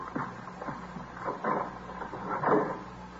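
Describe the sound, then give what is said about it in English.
A coat closet door in an apartment opens with a few creaky mechanical scrapes and knocks spread over a few seconds, the loudest near the end, with no talking. “She finished the apartment, and then she thought she'd check the coat closet right here. Mm-hmm. She opened the door, and there she was on the floor.”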